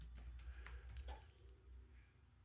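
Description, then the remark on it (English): A quick flurry of soft computer keyboard clicks taps away, irregular and fairly quiet, as someone types, then trails off into low background hum for the last second or so. “I am, as we speak, I'm typing.”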